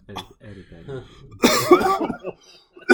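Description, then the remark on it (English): A man lets out a harsh, loud fit of coughing after taking a big smoking hit, a raspy burst lasting about half a second, preceded by low, muffled vocal sounds and followed by a quieter throaty tail. “That was a big ass rip. Yeah, you hear him coughing?”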